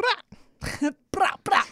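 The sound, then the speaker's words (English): A person imitates a growling dog with four short, rough, fairly loud vocal bursts, separated by brief pauses. “No, it's a growl. That sounds like a dog, right?”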